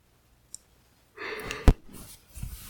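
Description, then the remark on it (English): A breathy yawn with a long drawn-out exhale, broken by a sharp click partway through and trailing off into softer breathing. No talking. “Why is it every time I come in this fucking room, I yawn a lot?”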